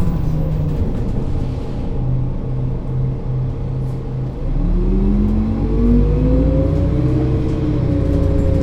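A large bus engine idles with a steady low rumble, then revs up as the bus pulls away along a street, its pitch climbing smoothly. The loud drone continues without speech.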